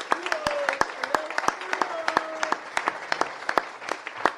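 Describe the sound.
A round of applause from a crowd: dense, irregular sharp claps at a steady moderate level, with some voices calling out over the clapping.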